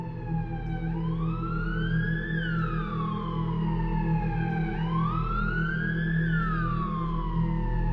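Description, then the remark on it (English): An ambulance siren wails loudly, rising and falling in slow sweeps about two full cycles, over a steady low engine rumble with no voices. “and I think that's when the ambulance, you could hear sirens out there everywhere, and then they pulled up.”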